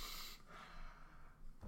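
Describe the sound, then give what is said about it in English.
A person makes a burst of loud, breathy snorting and sniffing noises, a voice imitating the rough churn of a lawnmower eating and sniffing grass, ending with a short sharp sniff. “It's me. I'm the lawnmower. I'm eating the grass and I'm sniffing it.”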